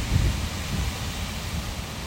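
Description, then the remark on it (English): Steady, blustery wind rushing through an open car window on a windy day in the city, with a deep low rumble and a constant airy hiss, fairly loud, gusting slightly at the start. No voices are heard. “It's a true treat when you're in the city, but all you can hear is the wind.”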